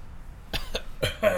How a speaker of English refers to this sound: You got a cough.